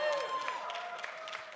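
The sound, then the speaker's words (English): An audience breaks into scattered, uneven clapping, several sharp claps standing out over a steady murmur of crowd voices and a sustained tone. “Don't clap yet.”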